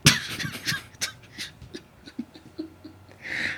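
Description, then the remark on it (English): A sharp cough picked up on a microphone bursts out at the start, followed by another brief cough a second later, then soft breathy sounds and faint noises with no talking. “and you can hear the cough on mic because of the quality of the equipment that we have now.”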